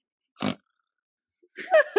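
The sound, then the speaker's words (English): A voice imitates a boar sniffing for truffles: one short, low grunting snort, a pause, then a run of loud, throaty, pig-like grunts and snuffles. “Did you see my boar sniffing?”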